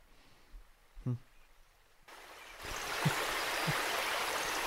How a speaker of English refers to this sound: I gotta take a shower. In the stream. Ankle deep in the stream. Just splashing water on himself. Just all of his clothes on.